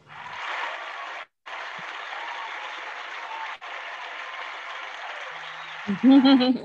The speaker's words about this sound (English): Hold on. I got to get the applause for this one here.